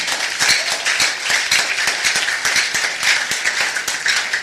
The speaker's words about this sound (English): If you are blessed today, can I see you clap for Jesus?